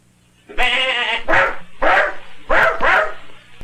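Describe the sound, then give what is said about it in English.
An old billy goat lets out one drawn-out bleat, then Penny the dog answers with four sharp barks in quick succession, keeping the goat away from a kite. Both animals are loud, with no talking. “Penny kept the old billy goat away while Frank saved the kite.”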